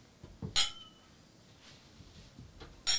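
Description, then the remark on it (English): Two bright glass clinks about two seconds apart for a toast. The first rings briefly with a clear high tone, and low thumps and faint rustling fill the quiet gap between them. “Should we cheers? On my mic, then yours.”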